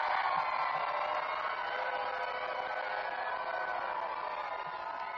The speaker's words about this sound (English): As you can hear the crowd going nuts, I tell you what, it's got to be a huge crowd because they're parking across the street, and they don't park across the street at all.